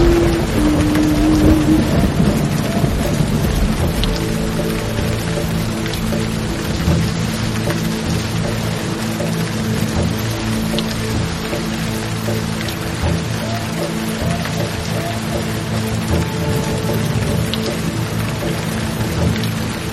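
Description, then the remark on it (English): Heavy rain pours down steadily and loudly for the whole stretch, a dense wash of hiss with a low rumble underneath like thunder, and no voices. “The rain flourished.”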